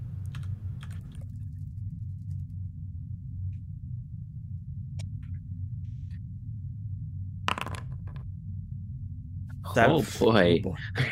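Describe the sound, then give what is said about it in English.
Eight challenge dice rattle and clatter across a surface in a few short, sharp bursts of clicks, over a low steady hum, with a brief voice near the end. “Eight challenge dice, please.”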